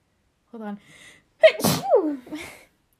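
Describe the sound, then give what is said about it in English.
A single sneeze: a short voiced inhale builds up, then a sharp, loud burst of breath trails off into a brief vocal sound. “I think I sneeze when I feel bad.”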